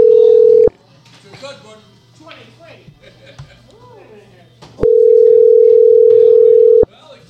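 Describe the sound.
A telephone ringing tone over the line as an old cell phone number is called: a steady electronic buzz cuts off, then after a pause filled with faint, muffled talking, a second long ring sounds loudly for about two seconds.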